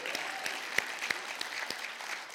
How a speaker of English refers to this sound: So Brent and Cindy, round of applause.